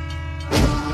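A low, steady engine rumble suddenly swells into a loud, rushing roar about halfway through, the heavy noise of a train engine passing, with no voices.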